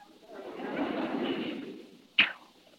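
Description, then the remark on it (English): A soft rushing whoosh swells for about two seconds, then a single sharp thwack lands, like an arrow loosed from a bow and striking, moderately loud. “Well, what's so hard about shooting a bow and arrow?”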